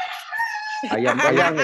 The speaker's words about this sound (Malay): Kalau anda dengar suara ayam tu maksudnya anda masih berada bersama kami. Ya faham, tapi makin ke belakang lah ayam tu.